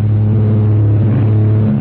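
A small private plane's engine drones loudly and steadily as it battles a terrific storm over the Trans-Jordan Hills between Cairo and Tehran, in the radio drama A Man Called X: a low humming roar with a constant pitch and a rushing noise layered over it. It lasts a couple of seconds with no voices.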